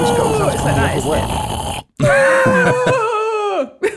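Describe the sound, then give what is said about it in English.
A voice imitates a gross, guttural yawn: a raspy, gravelly groan, a brief pause, then a long drawn-out moan that slides downward in pitch before a short final gasp. “it must make some weird sound. A gross guttural sound.”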